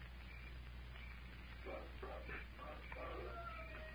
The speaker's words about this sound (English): There it is. Wolf howl.